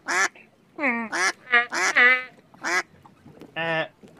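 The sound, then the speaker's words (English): A human voice imitates a duck, letting out a quick run of about eight nasal, honking quacks in uneven bursts, fairly loud, with brief pauses between them. “giving us, from … himself, a shucky ducky quack quack!”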